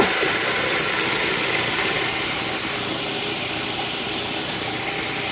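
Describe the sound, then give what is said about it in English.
A food processor grinds 2.5 cups of oatmeal into oat flour with a steady, loud motor whir and a gritty hiss, droning evenly for the whole stretch with no voices. “I'll put the lid on the food processor and I'm gonna turn it on.”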